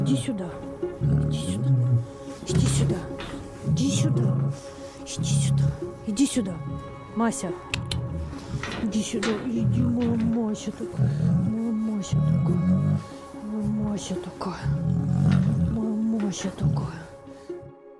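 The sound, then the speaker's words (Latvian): A lion roars in a long series of deep, rhythmic grunting bursts, each pulse booming out one after another for several seconds, loud and resonant against faint background noise. “Visbiežāk gadās lauvas.”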